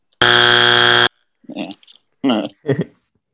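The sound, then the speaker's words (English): A loud, harsh game show buzzer, pressed by a host after a prediction, blares once for about a second, then cuts off, followed by a few short bursts of a person talking. “Because I buzzed you made this same prediction you said that they'd make the Super Bowl last year, and I buzzed it immediately.”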